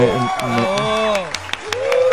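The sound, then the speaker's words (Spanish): Scattered audience applause, a handful of sharp claps at uneven intervals, mixed with loud voices and cheering that run throughout the short stretch. “Un aplauso.”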